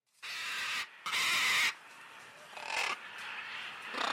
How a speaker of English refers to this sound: That's a scarlet macaw. As far as birds go, they're about as colorful and charismatic as they come.